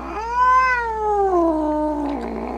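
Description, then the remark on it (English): A stray cat in an office lets out a long, drawn-out yowl, rising slightly then sliding down in pitch over a couple of seconds, fairly loud with no talking. “they're currently being heavily guarded by the stray cat Stavros has borrowed”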